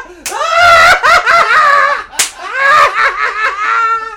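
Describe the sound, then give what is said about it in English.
Two sharp hand slaps, one near the start and one midway, ring out over loud, excited shrieking and laughter-like vocalizing that fills the whole moment. “Slap it. Slap it.”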